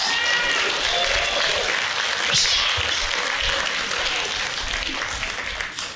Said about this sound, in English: You know, this year, my wife and I have been married 16 years. You better clap and cheer.